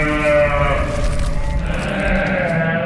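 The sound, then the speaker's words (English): A human voice imitates a goat's bleat, a loud, wavering nasal cry held for about three seconds with a quivering, harmonic tone, alone. “Oh, come on, you call that a goat call?”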